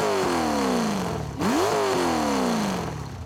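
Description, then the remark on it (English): A loud, rumbling big block 454 V8 engine with gas-ported piston rings, flat-tap camshaft and high-rise intake manifold, making almost 400 horsepower, revs up and down, its pitch sliding through a couple of throttle blips before settling into a deep, throaty idle. No one speaks. “rolled up, revving the dueled-out big block 454 with gas-ported piston rings, flat-tap camshaft, high-rise intake manifold, etc., etc.”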